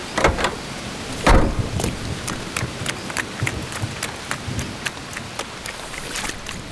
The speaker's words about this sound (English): Oh my, the rain is starting to fall harder and harder. I'm getting soaked!